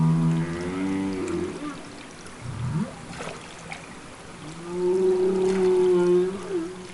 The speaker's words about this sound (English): And then there is what I think are perhaps the most interesting of all the sounds that humpback whales make, which are the calls or non-song calls. They're also called social sounds or social vocalizations.